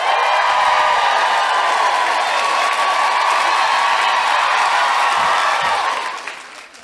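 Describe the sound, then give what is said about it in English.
A live audience in Sydney, Australia cheers and applauds in a dense, loud, continuous wall of clapping and shouting that holds steady for several seconds, then fades out at the end. “I always feel with guilty feminist audiences when you come out and you are just a wall of sound, I feel like if I went, let's go out and overturn a bus, you'd be like, yes!”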